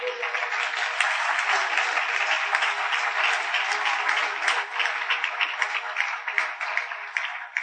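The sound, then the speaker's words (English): An audience breaks into steady, sustained applause for the Lord, many hands clapping together in a dense, even wash of sound for several seconds without any speech. “Give the Lord a clap.”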